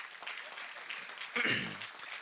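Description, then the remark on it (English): A church audience applauds in a steady, dense wash of clapping, celebrating that 219 people placed their faith in Jesus this year, with a brief voice or cheer rising above it midway before the clapping carries on evenly. “That's where you clap.”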